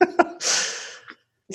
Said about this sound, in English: I sneeze at that.